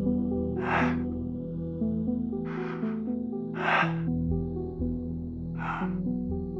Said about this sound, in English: I pressed play. It began with several seconds of heavy breathing.